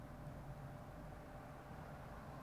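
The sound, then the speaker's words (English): A steady low rumble of outdoor traffic, cars droning past with no distinct individual pass-bys, fairly quiet and constant throughout. “Cars are driving by.”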